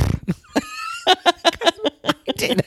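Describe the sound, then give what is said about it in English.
A person vocally imitates a Fred Flintstone-style cartoon snore, the kind that woke them while drifting off to sleep: a rasping inhale, a thin whistling tone, then a series of fluttering lip-vibration bursts in an uneven rhythm, fairly loud. “I did a Fred Flintstone snore. So I did this.”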